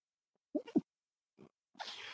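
A person sneezes: a couple of quick, throaty catches of breath, a brief pause, then a hissing, breathy burst. It sounds close and fairly quiet, with no talking.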